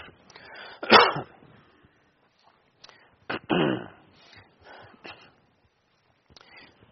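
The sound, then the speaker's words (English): A man coughs sharply a couple of times and clears his throat, with short bursts separated by quiet pauses and a few softer throat sounds. “Now I need a cough drop already.”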